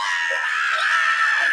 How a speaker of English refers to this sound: There's a great scream coming up here that leads into the guitar solo. Let's hear that scream.